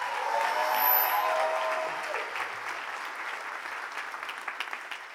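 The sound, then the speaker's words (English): A crowd claps for a man as he is given the floor, in a steady, dense round of applause that starts loud, then gradually thins out, with a few scattered individual claps near the end. A brief whistle-like tone sounds early on. “Give him a round of applause one more time.”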